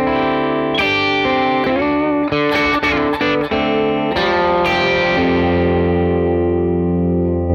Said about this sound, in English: You can sort of get some Fender sounds out of it with the volume control. But, I mean, that bridge pickup, I mean, that doesn't sound like a Les Paul to me. Very clear, you know.